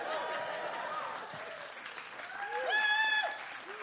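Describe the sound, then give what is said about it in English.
A church audience bursts into sustained applause, a dense wash of clapping with scattered high whoops and cheers rising over it toward the end. “And this is where the church just erupts into applause because we're so excited.”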